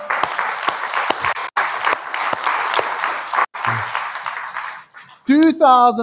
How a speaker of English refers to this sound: And we've had 2,800 people come through. Let's give the team applause there.